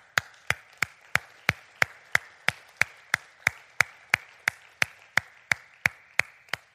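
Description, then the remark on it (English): A single person clapping in a steady, even rhythm, about three sharp claps per second, around twenty in all, with no voices. “I will clap that.”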